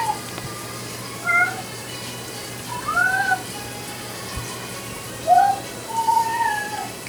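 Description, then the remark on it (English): A cat named Ross meows insistently at a closed door, four drawn-out, wavering cries spaced a second or two apart, over a steady background hiss like running water. “Ross doesn't like closed doors.”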